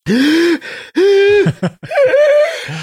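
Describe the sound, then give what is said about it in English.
A person lets out a run of strained, voiced gasps, three bursts in quick succession like a dry, gagging fit, loud and alone with no talking. “Just saying that, you know, gives me the dry, gasping.”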